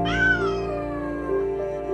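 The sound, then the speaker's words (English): Kittens, brought in boxes to a campus and destined for the roof, meowing in a steady, overlapping stream of high, drawn-out cries, fairly loud, with no voices or other sounds around them. “Tom Markley and Jesse Weaver were arriving on campus with boxes full of kittens destined for the roof.”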